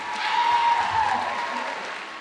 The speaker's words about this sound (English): Let's give another round of applause for the class of 2019.